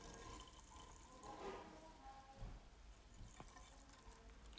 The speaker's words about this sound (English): Wait, can you hear the bubbles?